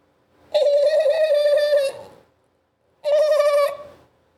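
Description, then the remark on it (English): A voice imitates a dolphin with two steady, high-pitched squealing calls: a long one lasting over a second, then a pause and a shorter one. Nothing else is heard. The noise is made for others to guess in an improv game. “Oh, that was a dolphin.”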